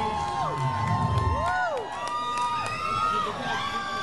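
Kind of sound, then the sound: crowd, concert crowd cheering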